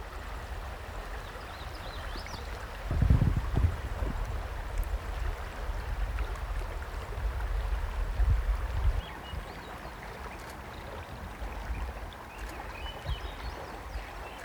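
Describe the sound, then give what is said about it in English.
A river rushes steadily at a bend, a continuous broad wash of flowing water with low rumbling gusts swelling briefly near the start and middle. No one speaks. “I found a nice sitting rock on the bend in the river.”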